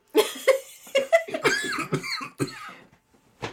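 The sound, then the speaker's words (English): A coughing fit: a rapid string of harsh, raspy coughs that run together for about three seconds, then a short pause before one last cough. “Look up when you cough.”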